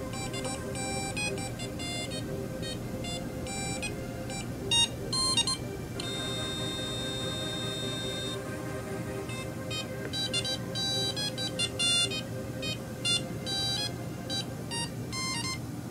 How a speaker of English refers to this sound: This is Adafruit Circuit Playground Express running the Beta 2, and this is a program reading MIDI over USB generating a variety of waveforms. So let's listen nice to this. Nice waveforms.